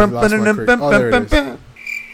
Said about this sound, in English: Yeah, do you have a cricket sound effect? Yes, I do.